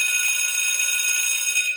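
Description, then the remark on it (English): A bell rings continuously with a bright, metallic, steady tone, sustained without a break through the short clip. It is fairly loud, with no voices. “Can we waste another 4 seconds and play the bell?”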